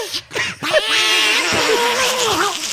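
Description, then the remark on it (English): A loud, nasal duck quacking, starting with a couple of short bursts and then stretching into one long, buzzy, wavering call lasting about two seconds. “Quack quack.”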